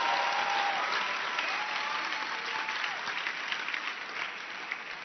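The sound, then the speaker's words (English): A church audience claps their hands in a steady, dense burst of applause that holds fairly even throughout, with faint cheering tones woven in and no clear speech. “Then clap your hands for Jesus.”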